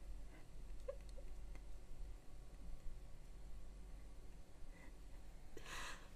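A yawn ends in a brief, breathy exhale over a low steady hum and a few faint clicks. No one speaks.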